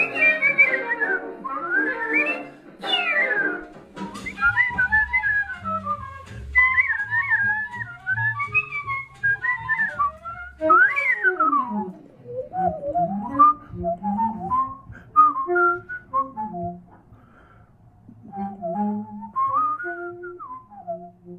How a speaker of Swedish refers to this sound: visslar till kända och okända jazzsolon.